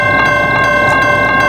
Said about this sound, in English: And then all of a sudden, you know, bam, there's the train. He was honking his horn, and the lights started flashing.